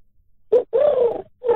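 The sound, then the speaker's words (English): A radio caller on Mix 102.3 mimics a pigeon's coo with their voice: a short low note followed by a longer, warbling rolling coo, then the start of another, fairly loud with no other talk. “Oh, that's not bad. Is that a pigeon? Yes.”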